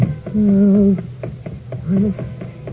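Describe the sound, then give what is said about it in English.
A cat meows twice as someone coaxes it to play, a drawn-out, steady cry followed by a shorter one, with faint taps and background noise between them. “Come on, kitty. That's right. Well, I won't hurt you.”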